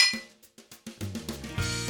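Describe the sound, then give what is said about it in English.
A quick series of bright clinks, like glasses tapped together in a toast, each with a short ringing tail, building into a fuller overlapping ring at the end. No one speaks. “To your health and holiness. Cheers.”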